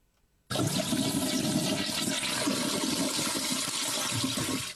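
A toilet flushes with a sudden loud rush of water that starts abruptly and holds a steady, full roar for several seconds, with no voices.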